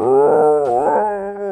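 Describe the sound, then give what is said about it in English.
A person imitates a beast's roar: one loud, sustained, throaty bellow lasting over a second, its pitch rising and falling slightly before it trails off a little quieter. “And that kind of, that roar fills the area.”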